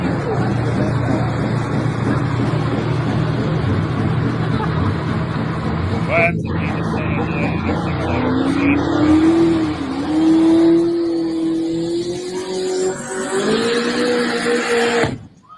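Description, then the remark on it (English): A supercharged car engine, its supercharger about nine inches, revs loudly and steadily, its rumbling tone climbing into a higher-pitched, sustained whine partway through, then holding there until it cuts off abruptly. “Yeah, that's screaming.”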